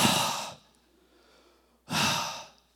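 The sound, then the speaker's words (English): A voice imitates heavy breathing into a phone, two long breathy exhales about a second apart, fairly loud, with near silence between them. “and you're just like listening to each other on the phone, like breathing.”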